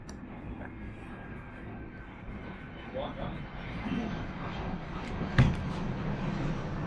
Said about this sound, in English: Yes, let the plane fly by.